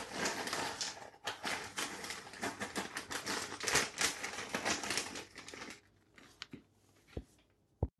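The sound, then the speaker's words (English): About 1 kilo of frozen corn kernels pour from a bag in a dense, rattling clatter for several seconds, then thin out into a few scattered clicks and taps before stopping. “And then, to the bag of frozen deliciousness is the frozen corn.”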